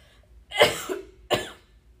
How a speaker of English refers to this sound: I have to cough.